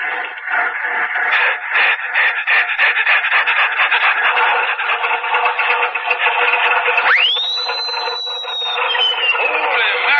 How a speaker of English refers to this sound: Listen to that Bearcat motor. Yeah, it sounds like the bear is chasing that cat all around.